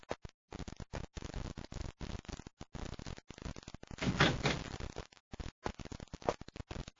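door opening

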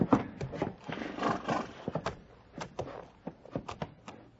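horse hooves and whinny

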